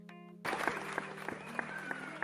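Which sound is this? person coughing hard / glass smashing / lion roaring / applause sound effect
applause sound effect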